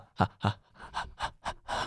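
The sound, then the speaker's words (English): A person pants like a dog, pushing out seven quick, breathy huffs in a steady rhythm. The sound is fairly loud, with no other voices. “You sound like a creepy dog.”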